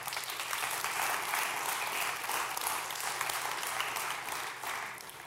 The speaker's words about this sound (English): Let's clap for Jesus.